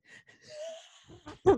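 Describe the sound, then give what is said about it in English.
A voice imitates a car engine that is out of gas and won't start: wheezy, strained breathy tones trail off into a few choppy bursts, ending in a loud rough cough-like splutter. “Yeah, it's like, you know, it's out of gas, but you're still trying to start it.”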